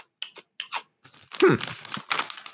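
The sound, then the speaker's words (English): Crunching of a light, airy, puffed dubu kimchi cracker snack: a few sharp crisp bites followed by denser, continuous chewing crackle, with no talking. “It's crunchy. It's airy.”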